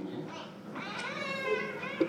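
A cat meows in one drawn-out, wavering call lasting a couple of seconds, moderately loud, with no talking over it.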